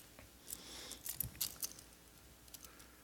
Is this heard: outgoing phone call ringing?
no